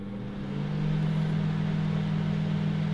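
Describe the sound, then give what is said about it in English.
A microwave oven heating popcorn hums steadily after a brief start-up, its low, even drone holding constant throughout at moderate volume with no voices. “Let me press the button on the microwave.”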